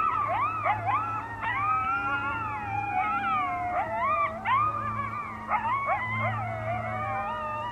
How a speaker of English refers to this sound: All right, so here are the howling coyotes.